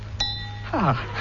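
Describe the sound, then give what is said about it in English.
A single sharp tap with a small hammer on a glass filled with water, one of seven ordinary glasses, sets off a clear, sustained ringing note that lingers briefly, followed by a short vocal sound sliding downward in pitch. “I fill up the glass so. And strike it so.”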